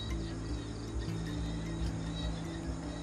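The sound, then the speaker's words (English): A steady, droning insect whine hums continuously over soft outdoor background noise, its pitch wavering slightly as mosquitoes dance around the listener. No one speaks. “The mosquitoes dance around me.”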